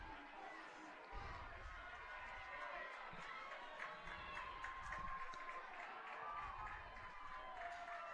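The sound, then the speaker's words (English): Steady applause and crowd noise fill a sports venue as fans applaud Ridgeline's goalkeeper coming off in a substitution, a continuous wash of clapping and murmuring voices that holds at an even level throughout. “Garvert will come off to the applause of fans.”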